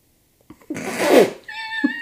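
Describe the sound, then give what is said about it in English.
A dog's yawn: a breathy, rising exhale that ends in a thin, high-pitched squeaky whine, moderately loud, with no talking. “Sorry, my dog was yawning.”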